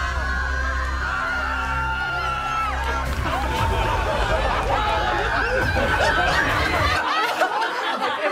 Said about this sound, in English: And we've got a look ahead for the upcoming Geek Makeovers. I can't tell from this level of screaming if the girls loved the reveals or were terrified of what they saw.